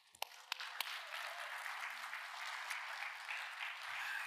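An audience breaks into applause: a few sharp, separate claps first, then a steady, dense wash of clapping that holds at an even level for about four seconds, with no talking.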